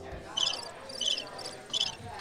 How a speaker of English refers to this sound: No, that would have been a perfect time to throw the cricket noise now.